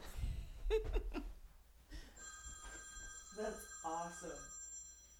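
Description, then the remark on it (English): A phone starts ringing with an incoming call partway through, a steady electronic ringtone that continues to the end, while people talk and laugh over it. “Oh my God, who didn't turn off their phone? No, it's me. Somebody's calling.”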